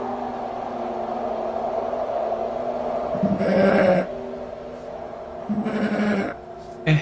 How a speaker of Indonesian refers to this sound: Ini... apa aku aja ya yang dengar suara kambing? Iya. Masa iya ada kambing tersesat? Atau ada kambing yang kabur ya les waktu Idul Adha kemarin?